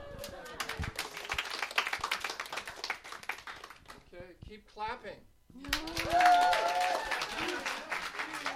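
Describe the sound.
An audience applauds in a dense, steady patter of many hands clapping. It breaks off briefly while a voice speaks, then swells back louder with voices mixed in.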